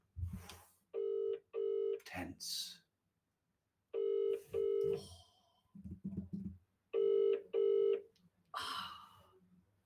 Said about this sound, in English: Let's put on, it's on loudspeaker, so hopefully you'll be able to hear as well. Ringing. Should we move it closer? It's ringing.